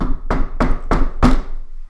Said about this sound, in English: They got a knock on the door.